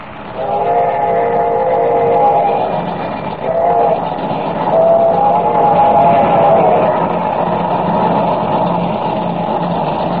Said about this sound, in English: But, unknown to Superman, the train schedule has been changed. Instead of leaving Larimer at 6:00, the train left at 5, and is now only 15 minutes from Rainbow Bridge. Listen.